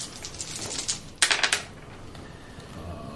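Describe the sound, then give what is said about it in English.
Three dice rattle and clatter onto a table in a tabletop roleplaying game search roll, with a few light taps followed by a quick burst of sharp clicks before they settle. Fairly quiet, with no talking. “How many dice do you have in search? Three. Yeah, just roll a straight search.”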